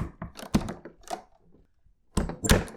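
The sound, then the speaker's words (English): A secret door labeled "secret noodle content" being opened: a cluster of hard clunks and rattles, a short quiet pause, then a louder burst of thumping clatter as it swings. No voices. “I'll just go to this secret door that I can find.”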